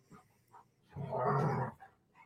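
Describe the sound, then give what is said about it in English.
Dogs whimper and bark in an office: a couple of short soft yelps, then a louder, drawn-out whining bark lasting under a second, trailing off into faint whimpers, with no talking. “What I was saying is the dogs hear your voice and the animals, and they start congregating into the office and doing this.”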